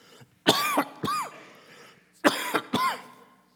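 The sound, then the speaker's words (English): Two pairs of harsh coughs, each burst ending in a rough throaty rasp, with a short pause between the pairs. No one speaks. “I got more cough drops. They're not working.”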